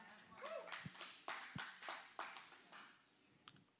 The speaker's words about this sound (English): I didn't ask them to clap.